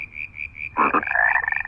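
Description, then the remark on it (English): A cane toad calls in a steady, fast trill, with a few short pulsed bursts and then a louder, continuous purring note. No voices. “Naomi is working with cane toads.”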